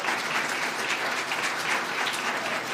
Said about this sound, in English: Let's give everyone a hand clap for that, those who volunteer.